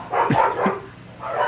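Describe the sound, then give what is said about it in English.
Several sharp dog barks in quick succession, fairly loud, with a couple of dogs yapping over each other and no talking. “What are those dogs doing?”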